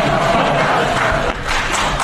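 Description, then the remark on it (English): Steady, loud applause from an audience as a speaker leaves the podium, a dense wash of many hands clapping at once with some crowd cheering mixed in, holding at an even level for about two seconds. “I would ask him again, and he gets applause on the way out.”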